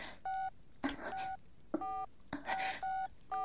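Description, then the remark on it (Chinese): A phone number being keyed in on a mobile phone: a series of about six short touch-tone beeps at an uneven pace, each with a soft tap or rustle between them, clear. “我一听立马拿出手机拨打号码。”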